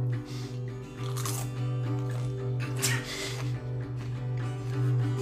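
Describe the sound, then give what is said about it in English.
Crunching of pretzel chips with hummus, a few crisp, chewy bursts spaced a second or so apart over a steady low electrical hum. “Listen to the delicious crunch of pretzel chips and hummus.”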